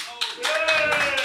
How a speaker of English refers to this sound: Let's do the round of applause for cool.